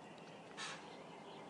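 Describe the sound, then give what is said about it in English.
A single harsh, raspy call from a bird in a tree rings out once, short, over a quiet outdoor background hiss with no one talking. “I think I may have an injured bird in the tree”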